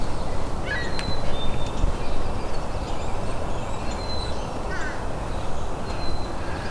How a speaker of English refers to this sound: And fish crow. Wow. All on its own. And it's flying away. That's the first fish crow I've had in years.